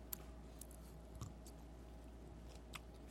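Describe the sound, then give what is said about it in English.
Wet chewing on pickle quarters, with soft irregular crunches and squishes every half second or so over a low steady hum, and no one talking. “I want this to be crunchier. I'm not really getting, like, the crunch I was anticipating.”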